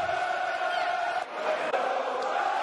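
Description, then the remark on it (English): Millwall supporters chant in unison for their team during a match against Leeds, a steady, sustained roar of voices that holds loud throughout, dipping only briefly before surging back, heard from within a stadium. “Fantastic support for the Lions today.”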